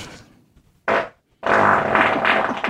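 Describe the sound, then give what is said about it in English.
A short fart blurts out against a door, then after a brief pause a longer, loud, buzzing fart rattles on for over a second, rough, with no talking. “He's farting against the door.”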